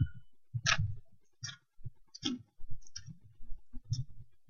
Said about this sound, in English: Let me hear those pages turning.